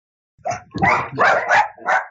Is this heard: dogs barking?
yes